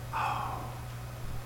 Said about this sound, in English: Oh, look, it's a bird. There's a bird now.